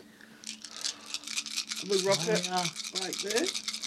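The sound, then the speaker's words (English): Eight six-sided dice rattle in a steady, rapid clatter as they are shaken for several seconds for a Lightning Bolt damage roll in a tabletop game, with a voice talking over the second half of the shaking. “We rock it like this. Shake it, baby, shake it.”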